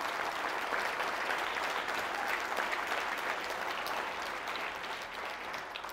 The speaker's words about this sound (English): And so let's give a round of applause to the Ron Paul Scholars.